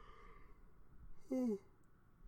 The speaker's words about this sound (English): My bad. I'm going to yawn a lot today. I am sorry.